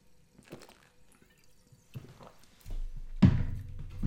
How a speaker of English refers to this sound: Excuse me for one sec. Quick sip.